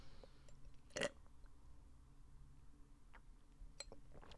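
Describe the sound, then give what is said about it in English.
A quick sip of juice: one short slurping swallow near the start, followed by a few faint mouth and cup clicks, otherwise quiet, with no talking. “Guys, okay, quick juice sip.”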